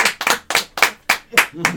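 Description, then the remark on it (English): A quick, steady run of about seven sharp hand claps, fairly loud, a few slightly doubled as if more than one person is clapping, with a faint voice near the end. “Clap off!”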